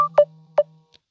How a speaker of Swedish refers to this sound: Nu vibrerar det jättemycket i min mobil.